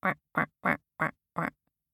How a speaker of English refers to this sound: She noticed little ducks quacking in the shallows.